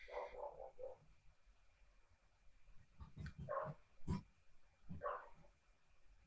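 Dogs bark a few times in the background, short irregular yaps spaced over several seconds, with a quick run of lower croaking sounds at the start and no one speaking.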